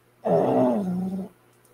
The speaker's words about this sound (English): I'm just showing you how that dog. Can you hear him snoring? That dog's actually snoring. You may or may not hear.